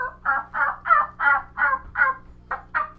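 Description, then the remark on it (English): A turkey hen cutting and clucking: a rapid, steady run of about nine loud, sharp clucks over three seconds, with no one talking. “So, this hen's cutting and clucking and purring.”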